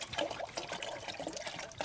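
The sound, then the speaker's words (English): Water splashes and trickles steadily for a couple of seconds, moderately loud, like water being poured out into a bowl, as a splash of water is given to a Weimaraner dog to drink, with no talking. “So I give him a splash of water now so he can have a little drink.”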